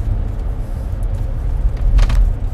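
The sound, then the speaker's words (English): A steady low rumble of a car in motion, with road noise filling the low end and a brief brighter whoosh partway through, as if heard from inside the vehicle, driving in to work on a Saturday morning. “Still heading into work. Still driving in.”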